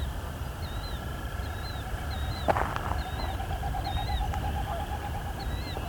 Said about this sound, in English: It's a killdeer.